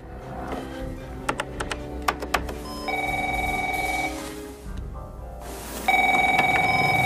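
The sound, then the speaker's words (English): A telephone rings in two loud, steady electronic bursts separated by a short pause, following a run of sharp keyboard typing clicks over a low background hum; a film scene in which Jack Ryan phones Ritter during a keyboard duel. “And so this sets up this scene where Jack Ryan calls Ritter. Ritter gets on the phone, knows that he's breaking in, and they have a keyboard duel where it's like, type, type, type, type, type, type, type, type, type.”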